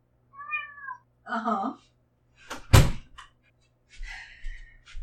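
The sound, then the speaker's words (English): A cat meows insistently a few times in short, drawn-out calls outside a door, with a sharp thump like a door knocking partway through before the meowing starts up again. “I've got a goddamn cat screaming outside my door.”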